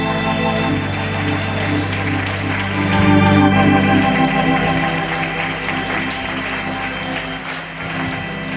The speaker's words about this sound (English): Come on, jump to your feet and clap your hands and shout hallelujah. Hallelujah. Come on, clap your hands and praise Him. Everybody in the building, stand to your feet and clap your hands and thank God for the blood.